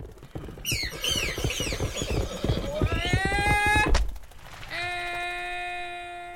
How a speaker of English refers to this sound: Horse panicked and kicked about.